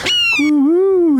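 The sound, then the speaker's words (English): A person imitates an owl's hoot with a single drawn-out, wavering vocal tone lasting about a second, fairly loud, with no other talking. “How does the owl go again?”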